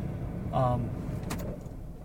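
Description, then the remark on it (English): A car engine rumbles low and steady in a parking lot at T-Mobile, a sharp click sounds as the driver turns the car off, and the idling drone drops away into a quieter hush. A brief tonal murmur rises partway through. “I turn the car off.”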